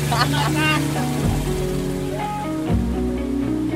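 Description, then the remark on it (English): A boat's motor drones steadily as the boat takes off on a river, its low hum shifting pitch twice as it picks up speed, with faint indistinct voices mixed in over the engine noise. “is washing her feet in the river as we are taking off in the boat.”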